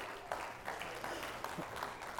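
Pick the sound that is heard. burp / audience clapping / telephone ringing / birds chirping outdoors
audience clapping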